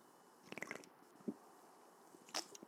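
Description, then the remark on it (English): Quiet mouth sounds of someone sipping a 3D energy drink: a cluster of small wet clicks, a soft gulp, then a brief slurping burst near the end, with no talking. “It's time for the godly sip.”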